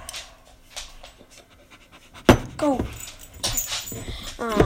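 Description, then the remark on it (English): A dog pants rapidly, breathy rhythmic huffs joined by short high whining whimpers after a sudden thump midway; a person briefly says a single word. “Sorry, my dog is right here.”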